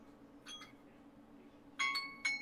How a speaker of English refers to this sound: All right, That means time to shut up. Hey, that is the most dainty alarm sound ever,